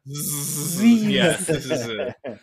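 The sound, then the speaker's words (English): A person imitates snoring with a long, buzzing, hissy 'zzz' sound, saying the Scrabble word ZZZ, voiced and steady for about two seconds before a brief pause and a short final buzz. “Z-Z-Z, the sound of snoring, is a Scrabble legal word.”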